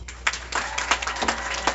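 A crowd at a Wisecracker show applauds, a steady, dense wash of many hands clapping with scattered sharper claps standing out. The applause holds at an even, moderate level with no voices above it.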